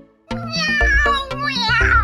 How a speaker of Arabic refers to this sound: رمش زوج من العيون الخضراء البريئة في وجهها في الظلام. إنه كائن حي. كانت مجرد قطة عالقة في قاع السلة. كيف دخلت هناك؟